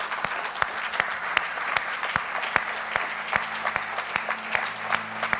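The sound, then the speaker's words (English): A large church audience claps and applauds steadily after a fundraising total is announced, a dense wash of many hands with a few sharper, louder claps standing out, sustained throughout at moderate volume. “I'm not sure clapping is enough, but I don't know what else we could do.”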